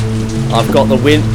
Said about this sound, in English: So the hail's coming down and the storm's getting worse.